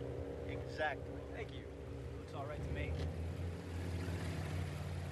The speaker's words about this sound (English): You don't have to go cruising up and down the beach in a boat.